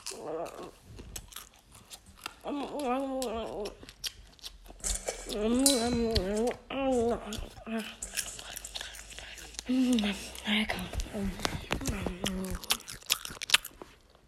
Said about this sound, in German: Ja, dann die Leute, die einfach nur schmatzen. Oh, jetzt gibt es endlich wieder Popcorn.